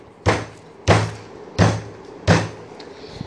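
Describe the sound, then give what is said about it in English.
Four heavy, booming thuds on the ground strike at a steady, even pace, each one a deep, resonant impact that quickly fades. No voices accompany them. “So basically, one day, the mermaids, their island went up, they got re-involved into humans, and went on with their bidding, as usual, till one day, they heard thudding on the ground.”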